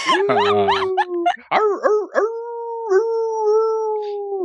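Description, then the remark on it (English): A female dog howls loud and siren-like, like a little ambulance: a wavering wail, a few short rising yips, then one long, steady, drawn-out note that holds to the end. “Man, she can howl it. She can be like a little ambulance.”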